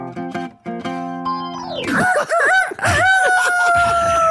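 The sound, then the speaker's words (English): A few short musical tones open, then a loud rooster crow in the morning breaks in, warbling up and down before stretching into a long, slowly falling final note. “That is the crow.”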